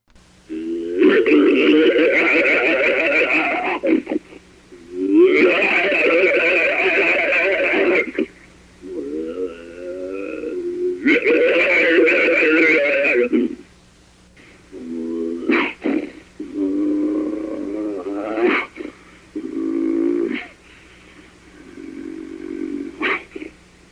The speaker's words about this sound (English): The snarls and growls could startle anyone